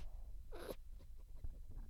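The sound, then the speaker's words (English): A three-month-old blue heeler puppy gives one short, breathy sniff, a quick hiss of air about a quarter-second long, followed by faint snuffling and soft rustling. No one speaks. “Nice little sniff there.”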